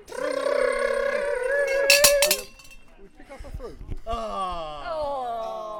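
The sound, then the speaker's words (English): A fruit machine lever is pulled with a sharp clunk, followed by a quick run of ratcheting clicks, framed by bright, sustained electronic tones before and after the mechanism. “Go on then, pull the lever down. Pull the lever down again.”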